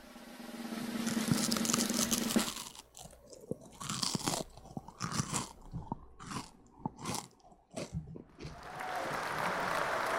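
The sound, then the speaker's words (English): Crisp crunching of a Triscuit cracker being bitten and chewed for ASMR, a rapid series of sharp crackly bursts with brief pauses between, and no talking over it. “Not a bad crunch.”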